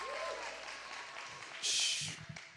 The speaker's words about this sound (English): Come on, give the Lord a big hand clap of praise. Come on, give the Lord a big hand clap of praise. Come on, you can do better than that.